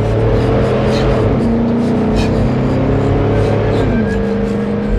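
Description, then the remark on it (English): A loud truck engine roars and revs continuously, its droning pitch stepping up and shifting a couple of times as the truck strains while fishtailing and the driver tries to keep control, with no voices present. “And I was thinking that because I could see it come into view every once in a while because I was fishtailing, trying to keep control of the truck.”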